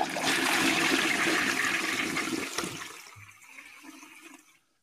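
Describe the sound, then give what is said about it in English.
A toilet flushes with a loud, broad rush of water that swirls and gurgles for a few seconds, then tapers into a quieter refilling trickle before cutting off. “Gabe, I think that's your second toilet flush of the season. Sploosh.”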